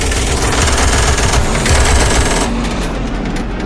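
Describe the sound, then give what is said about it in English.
Loud bomber machine guns fire tracer rounds into the night sky at an attacking Messerschmitt fighter as the plane heads back towards Britain, in a dense, unbroken rattle, the rapid shots blurring into a continuous roar for several seconds with no voices. “The guns of Armstrong and Smith lit up the night sky.”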